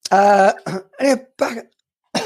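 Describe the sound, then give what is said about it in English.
A small cough: a cluster of short throat-clearing bursts, four in quick succession, a brief pause, then one more starting at the end, with no one talking. “Little cough.”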